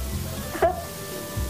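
A dog, Nellie, 1.5 years old, lets out a single short, high yelp or bark over a steady low background hum with no one talking.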